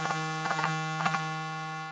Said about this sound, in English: My phone does this thing where it vibrates, dude. It's real weird.